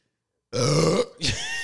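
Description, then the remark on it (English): A loud, low, guttural burp bursts out after a moment of silence, then a shorter second belch-like grunt follows right after it. “Dog, you just swallowed a burp. I should have just let it out.”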